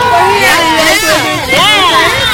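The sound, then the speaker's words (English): A group of voices gives one final cheer together for the show Special Chronicles, loud and sustained for a couple of seconds, with many overlapping high-pitched shouts rising and falling in pitch. “Do you guys want to give just one final cheer?”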